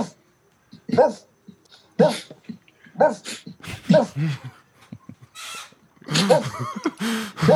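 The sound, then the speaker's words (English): A person mimics a dog, letting out short, loud barks about once a second, then breaking into a run of whiny, whimpering yelps. “Yeah, we it might be kind of mean that we're recreating this. But what do you guys think about that ghost dog coming to visit? Woof.”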